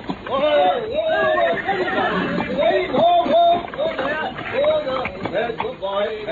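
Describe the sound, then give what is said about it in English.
A horse pulling an empty, driverless trap whinnies loudly and repeatedly amid a busy, continuous commotion, with excited voices mixed in throughout. “Try to stop the horse.”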